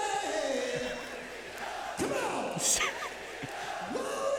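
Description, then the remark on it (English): A concert crowd cheers and roars without a break, many voices blending into a dense wall of noise, with individual shouts and whoops rising above it. “Listen to the crowd.”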